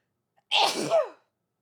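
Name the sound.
sneeze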